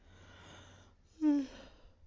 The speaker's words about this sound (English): My God, third yawn.